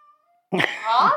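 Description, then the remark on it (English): A cat lets out one drawn-out meow, close and fairly loud, after a brief near-silent moment, its tone wavering as it stretches on. “The cat loves me.”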